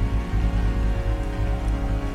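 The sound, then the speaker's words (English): An audience at a Sunday morning church service at the Rock Church applauds its guests with a dense, steady wash of hand claps that holds at an even loudness throughout, with sustained low musical tones running underneath. “Would you help me give a great big hand clap one more time for all of our guests?”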